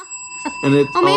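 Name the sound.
bell being rung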